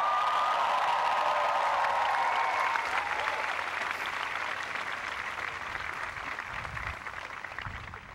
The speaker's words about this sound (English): Conan Doctrine, all commencement speakers who shamelessly pander with cheap inside references designed to get childish applause will be forced to apologize to the greatest graduating class in the history of the world, Dartmouth Class of 2011 rules!